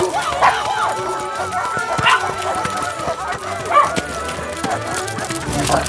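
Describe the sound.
A dozen or more dogs on leashes, one named Beardsley, bark and yip in scattered, overlapping bursts, moderately loud, with a busy background and faint voices mixed in.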